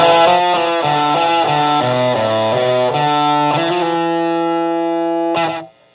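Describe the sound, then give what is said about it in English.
A distorted electric guitar played through a plexi distortion pedal, with the pedal's tone opened up and some of the guitar's tone closed off, plays a short melodic phrase of sustained, overdriven notes, loud, ending on a long held note that cuts off abruptly. No one speaks. “I'm opening up the plexi tone and closing off some of the guitar tone.”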